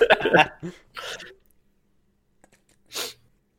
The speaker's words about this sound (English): Oh, dead air and a sniffle while I take a big sip of water.